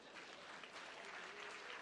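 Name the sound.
audience clapping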